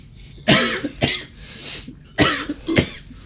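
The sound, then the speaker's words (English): A loud coughing fit: four harsh, raspy coughs in two pairs separated by a short pause, with no talking. “You're listening to coughs.”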